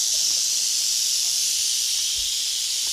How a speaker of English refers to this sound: I thought I'd show you a picture of what a brood of vipers looks like. Let's get more of the rattle. There we go.